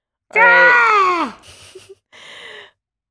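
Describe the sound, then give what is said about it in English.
A voice imitates a screaming gull: one loud, high, wavering cry sliding downward for about a second, followed by two shorter breathy, hissing sounds. “That was the gull.”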